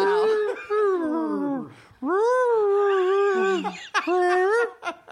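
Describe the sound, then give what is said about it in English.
A person's voice imitates whale song with long, wavering moans that swoop up and down, in about three drawn-out phrases, fairly loud with brief breaths between. “you hear a whale song, and then you translate it”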